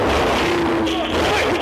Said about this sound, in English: February 2019, this scene unfolds outside a Woodbridge, New Jersey hotel. A suspect parked in a Dodge Challenger is accused of stealing from the gift shop. As officers are questioning the driver, he cranks up his car.